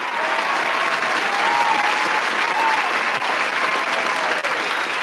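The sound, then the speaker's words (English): Steady, dense crowd applause fills the whole stretch, a continuous wash of clapping at even loudness with faint whoops or voices mixed in and no pause or fade. “Crowd agrees with your Red Zone. Loves my stuttering take for the Houston-Washington game.”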